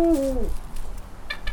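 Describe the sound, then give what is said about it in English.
A single deep, resonant hoot from a female Eurasian eagle owl, the largest owl species in the world, drops slightly in pitch as it fades within half a second, followed by faint background noise and a few soft chirps. “This is called a Eurasian eagle owl, and that's the largest species of owl in the world.”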